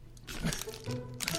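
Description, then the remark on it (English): Crunching as someone bites into a single piece of broccoli, a quick run of brittle, crackling chews lasting barely over a second, fairly quiet and with no talking. “That's some crunchy broccoli.”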